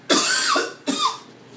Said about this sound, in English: What's that? Just hit pause when I cough? Okay, next time I will.